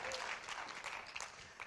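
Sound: audience applauding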